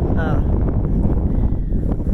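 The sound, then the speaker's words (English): Steady outdoor wind at the Hillville Cemetery buffets the microphone in a continuous low rumble that holds at a constant, fairly loud level, with a brief voice-like hum near the start. “So today it's a little bit windy, but let me just dive right into my little message.”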